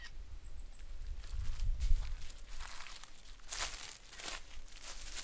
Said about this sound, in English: Walking through dry leaves.